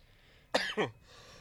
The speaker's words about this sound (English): Sorry about the coughs, guys.